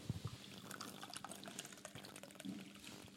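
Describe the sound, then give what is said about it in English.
Hot water from a separate pot is poured steadily into a mug of British tea with the milk already in, a continuous splashing trickle lasting about three seconds, fairly quiet, with no one talking. “Adam's doing a very good job. Milk, then hot water.”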